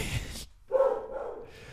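A dog gives a short bark or yip, a quick tonal burst after a brief pause, with some vocal-like sound around it.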